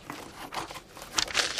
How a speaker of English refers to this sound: What's that? Ein Zettel. Someone has pushed a note under your door.